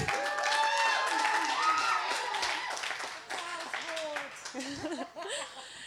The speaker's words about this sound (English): Guys, big round of applause, come on.